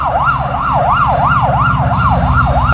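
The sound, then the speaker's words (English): An ambulance's wailing emergency siren sweeps up and down in a fast, repeating cycle, loud, over the low rumble of idling traffic and engines as the ambulance gets past cars at a red light. “An ambulance is needing to get past some cars at a red light.”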